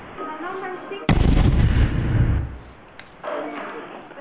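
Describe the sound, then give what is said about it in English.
A sudden loud pop from a small campfire doused with gasoline bursts out with a deep rumbling roar lasting about a second, then a smaller crack follows; a person talks before and after. “First of all, it went up in big flames, and now it just keeps popping. Like, every few seconds, it's popping.”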